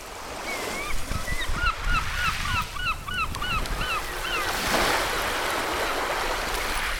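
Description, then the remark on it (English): Seagulls call repeatedly in overlapping bursts over a steady wash of sea waves, the gull cries fading after a few seconds while the surf continues rolling in the background. “So we're not, the setting is not true, but if you can hear by the seagulls in the sea that you can hear right now.”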